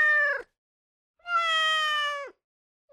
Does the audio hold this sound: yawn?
no